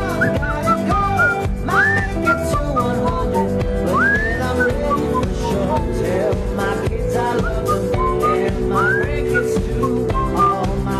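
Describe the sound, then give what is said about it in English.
A clear whistled melody with rising, sliding notes rides over a steady, full band backing, the whistling prominent and continuous throughout. “You know what this song needs? Whistling.”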